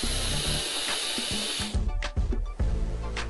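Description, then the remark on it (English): A vape tank at 72 watts with its airflow fully open: a steady, airy rush of drawn air with a faint high whistle riding on it, lasting about a second and a half, then breaking into softer, uneven hissing puffs. “but I'm pretty sure you guys hear it has like a whisper, if you have the airflow or a whistle, when you have the airflow all the way open, which is kind of annoying, but fuck, whatever.”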